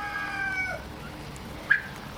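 Eleven turkeys, toms and females, cluck and call in a pen: a drawn-out, wavering call fades, followed by a single sharp, loud cluck, with no talking.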